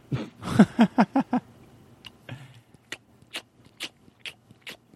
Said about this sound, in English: Are you chewing gum?